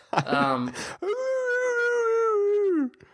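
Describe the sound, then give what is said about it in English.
A voice imitates a seal's call: a short, rough barking burst, then a long, steady moaning wail that holds its pitch before dipping and cutting off. “I liked all the new characters that they had, especially the seals and the bird.”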